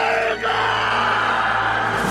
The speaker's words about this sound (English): All right, yelling. Okay, this is the one where she sneaks in and takes the map, and then he yells, waking up.